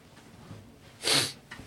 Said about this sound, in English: On this podcast, we will be sneezing into the mic.